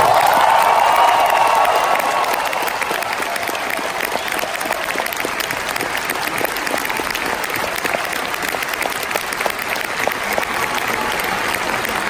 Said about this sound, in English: I mean, and I just want to say, can we get a big applause for my mentor, Mr. Peter Mayhew?